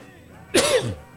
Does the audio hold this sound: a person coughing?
yes